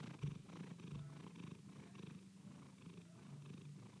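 cat purring

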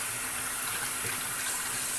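tap water running

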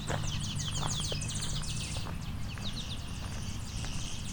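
clay-colored sparrow buzzy song

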